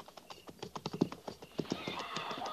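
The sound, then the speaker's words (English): Several cavalry horses' hooves clop steadily on hard ground, their overlapping, uneven beats as the group is led out, with a rising shuffle of noise behind them. “Prepare to mount. Mount. Forward. By twos. At the walk.”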